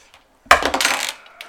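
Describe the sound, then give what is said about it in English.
A hard plastic twenty-sided die (d20) drops onto a tabletop and clatters briefly in a quick burst of rattling taps that fades within about a second, with no voices. “So now roll your d20 to see what happens.”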